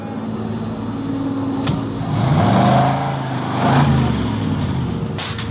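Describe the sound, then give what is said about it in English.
Car engines rumble steadily at a service station's 10-minute car wash, swelling twice in rising revs before settling, with a couple of sharp clicks cutting through the continuous mechanical noise. No one speaks. “Ben and I took up our posts as supervisors of the station's 10-minute car wash.”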